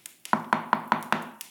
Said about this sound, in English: while I nodded nearly napping, suddenly there came a tapping, as of someone gently rapping at my chamber door.